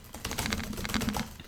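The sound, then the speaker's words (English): Rapid, fairly loud typing on a computer keyboard: a steady flurry of crisp key clicks with a faint low hum underneath, and no voices. “I like how they do it so loud, so it seems like, just to let you know, I do have a keyboard, so.”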